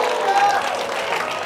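A church audience at a morning service erupts in a dense, steady roar of shouting voices mixed with clapping as they give the Lord a shout, loud and continuous for the whole moment with no single voice standing out.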